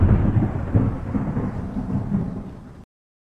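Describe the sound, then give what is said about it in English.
A deep, rolling rumble of thunder from a lightning storm, heavy and steady for about three seconds before easing slightly and cutting off abruptly. No voices are heard. “Also, you want to look out for if we had any lightning storms.”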